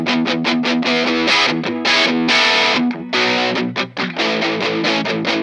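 Gibson USA electric guitar with an artist signature on the truss rod cover, played through a 1981 Inventions Overdrive with the tone set slightly up: a busy riff of rapid, chugging chords and choppy strums, gritty and loud throughout with brief pauses near the end, and no one talking.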